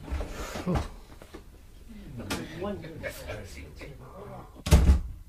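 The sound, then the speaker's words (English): A front door creaks open with a brief knock as a departing Christmas visitor is seen out, voices murmur for a few seconds, then the door shuts with a loud, heavy thud. “We'll see you to the door, Godpapa.”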